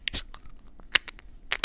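A can of beer brewed with Citra, Cascade and Chinook hops cracks open in a few sharp, crackly bursts of hiss and snap, separated by brief quieter gaps, with no voices.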